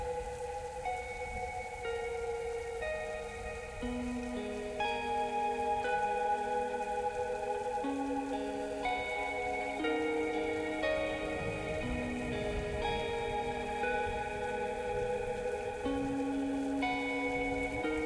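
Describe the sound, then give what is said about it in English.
Steady, continuous rainfall fills the background at an even level, with sustained musical chords layered on top that shift every few seconds. No one speaks. “It's raining out.”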